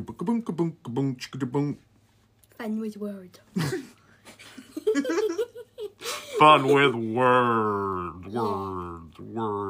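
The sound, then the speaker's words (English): A voice calls out through hands cupped around the mouth, making a loud, drawn-out, muffled sound near the end, after a stretch of playful vocal noises and giggly bursts. “He's echoing. He's putting his hands around his mouth”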